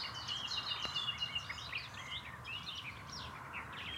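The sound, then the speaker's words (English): A nightingale, buried deep in dense undergrowth in Dorset, sings among a busy dawn chorus, its quick varied phrases and whistles mixing with other chirping birds over a steady soft background hiss, with no voices. “Nightingales at dawn in Dorset – magical, beautiful and moving”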